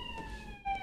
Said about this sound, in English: There's another siren, but it's on the podcast. Don't pull over.